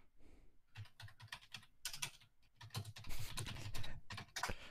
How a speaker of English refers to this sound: Hear you typing.